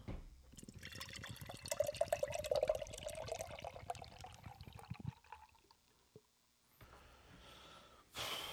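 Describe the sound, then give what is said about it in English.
Beer of 11.7% ABV pours into a glass, a steady foamy splashing whose pitch climbs as the glass fills for about five seconds, then fades to quiet before a brief rustle. “Poured out. It's looking creamy as fuck.”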